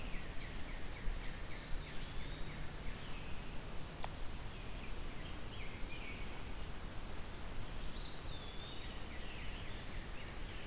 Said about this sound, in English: But this black-throated green warbler is a pleasant surprise, because we're in Norfolk County. About an hour and a bit drive from Hamilton.